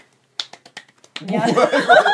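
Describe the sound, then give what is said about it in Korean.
About six sharp hand claps ring out alone in a quick, slightly uneven burst as hosts greet each other at the start of a board-game talk show, then give way to a louder swell of overlapping voices and laughter. “뭐야? 이 박수야?”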